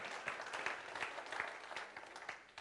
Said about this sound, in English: She's our artist in the house. Can everyone give her a clap? Yeah.